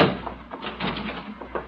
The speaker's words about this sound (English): The door's giving way. Nothing to do now but hide behind the sofa.